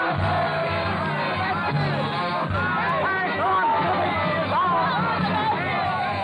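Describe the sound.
A mob of ragged, bearded patriots swarming in the Rue Saint-Nicaise with pikes raised shouts and chants together in a loud, continuous roar, with rising and falling cries and a ragged, hoarse singing quality, steady throughout.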